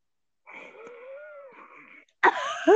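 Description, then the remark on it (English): A long, high whistling wheeze drawn out over a breath, followed by a sudden harsh, loud cough-like burst at the end; no talking. “Why do they wheeze when they cough?”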